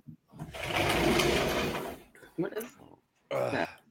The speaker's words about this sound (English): Oh my God. It's the door. Yeah. What are they doing? Door.